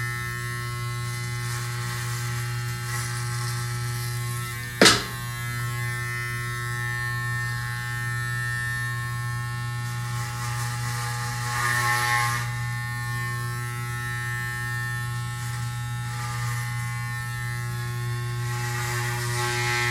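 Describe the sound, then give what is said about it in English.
New electric hair clippers buzz steadily with a low, constant motor hum, the tone shifting slightly as they cut through hair, with one sharp click partway through and no talking. “And I got these new clippers.”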